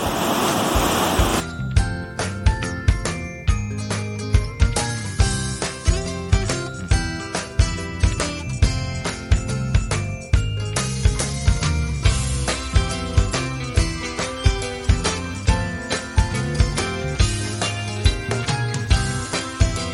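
Water cascades and churns, boiling as it goes, down a long drop that is not quite a waterfall, in a loud, steady roar, with rushing turbulence that swells and pulses throughout, with no voices.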